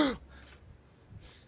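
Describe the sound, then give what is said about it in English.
A sharp, breathy intake of air starts things off, followed by a couple of softer, airy breaths; fairly quiet, with no talking. “Le gasp.”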